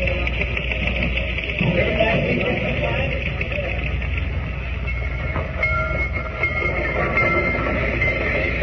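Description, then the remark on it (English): A dirty train rolls steadily along the rails toward Rocky Ford, a loud, continuous rumble with a dense metallic rattle that stays constant throughout. “I've never been on such a dirty train.”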